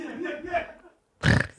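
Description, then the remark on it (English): A voiced, throaty sound rumbles for most of a second, then after a brief silence a louder, harsher burp bursts out, coarse with a low rattling growl. “I have a present for everybody burp.”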